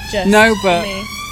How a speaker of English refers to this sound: Oh, just waiting for the ambulance to go past.